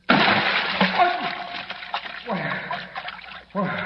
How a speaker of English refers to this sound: Batman, plummeting down through inky black space, lands in a deep vat of ice-cold water. Listen.